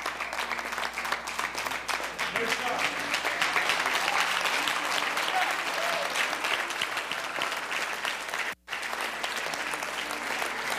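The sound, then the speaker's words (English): Sustained, loud applause from a large church audience, a dense steady wash of many hands clapping for the full stretch, with a brief dropout near the end before the clapping resumes, as people walk up to the front to be prayed for. “And you ought to clap like your mama's coming up here.”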